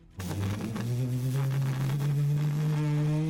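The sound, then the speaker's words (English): A motorcycle engine kicks in suddenly and holds a loud, steady buzzing drone, its pitch climbing gradually as it revs. No voices. “sound of a motorcycle.”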